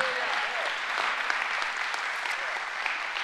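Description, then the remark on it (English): An audience claps steadily for a few seconds in praise of God during a worship sermon, dense overlapping hand claps with a few faint voices cheering underneath. “If you believe that today, give him a hand clap and say, yay.”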